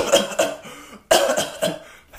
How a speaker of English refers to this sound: I could hit air out of my bong, but I'm going to cough probably.